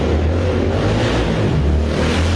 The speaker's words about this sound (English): I think I like the person riding that motorcycle, by the way.